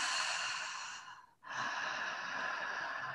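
Slow, audible breaths through the mouth, one long airy breath, a brief pause, then another drawn-out breath, fairly loud with no talking.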